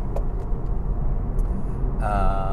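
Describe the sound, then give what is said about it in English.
Steady road rumble from a car driving along behind a pickup truck towing a car trailer carrying an old Ford Mustang, a continuous low drone with no voices, joined near the end by a thin whining tone. “So it's a pickup truck towing a car trailer that has an old Ford Mustang.”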